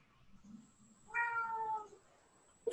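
A single drawn-out cat meow, clear, with a faint steady whine in the background and a brief sharp clatter right at the end.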